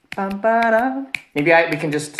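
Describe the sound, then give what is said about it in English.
Several sharp finger snaps keep a steady beat while a voice sings a wordless tune over them. The snaps stand out crisply between and beneath the sustained singing. “Snaps, like...”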